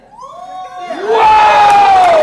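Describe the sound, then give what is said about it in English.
A crowd of children screaming and cheering, starting with a few rising shrieks and swelling after a second into a loud, sustained roar of excited voices. “You better scream.”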